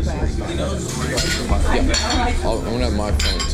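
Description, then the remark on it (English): Busy diner ambience in a New York diner, heard from a booth by the kitchen: steady clinking of cutlery and dishes, with sharp bright clinks now and then over a constant murmur of indistinct voices. “We arrive at the diner 15 minutes early and get placed in a booth by the kitchen.”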